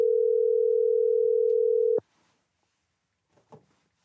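A phone call placed from a Google number rings on the other end with one steady, loud electronic ringback tone lasting about two seconds. It then cuts off into near silence broken by a couple of faint, brief noises.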